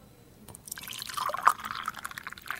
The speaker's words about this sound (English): So, I'm going to pour jug A. Okay. Okay? So this is jug A. Jug A.